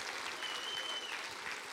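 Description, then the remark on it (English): A room full of people claps steadily, a dense wash of overlapping hand claps with no clear rhythm, sustained and fairly loud throughout. “Say, I'm going to clap for you because you're here right now. And clap for him.”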